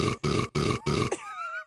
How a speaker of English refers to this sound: That wasn't the only time that you burped in the show.